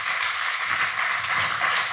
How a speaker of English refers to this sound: Let's give a big round of applause for the GOAT right here.